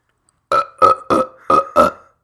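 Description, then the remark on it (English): A quick run of five loud burps, evenly spaced about a third of a second apart, each a short guttural croak, with silence before and after and no talking. “So I had this burp and I was trying to”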